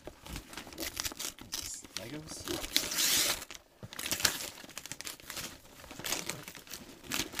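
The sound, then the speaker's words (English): Scrap-paper gift wrap crinkles and rips open in a busy stretch of tearing and rustling, with a brief burst of harsher shredding midway and a voice speaking briefly over it, as a Friends television series Lego playset is unwrapped. “So now I'm going to open it live.”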